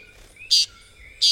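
Two short, buzzy calls of a Puerto Rican tody, a tiny green bird found only in Puerto Rico, spaced about half a second apart, ring out loud over a faint background of thin, steady chirping.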